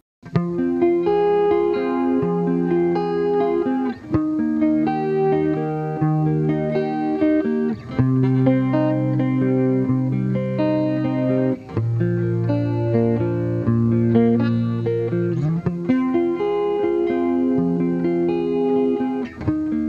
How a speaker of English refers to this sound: For our final tone, we're going to bring it back to another cleaner tone. This one with a more prevalent guitar signal